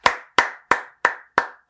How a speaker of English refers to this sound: Oh, that's me clapping.